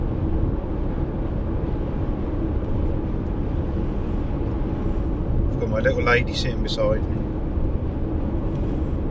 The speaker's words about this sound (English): Sitting here in the car, rattling along the motorway.